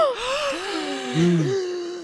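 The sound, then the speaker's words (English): Several voices gasp at once in shock as a gun is pulled from a bag, overlapping sharp intakes of breath that rise and slide in pitch, fairly loud, lasting about two seconds with no speech. “pulls a gun from the bag, gasps all around.”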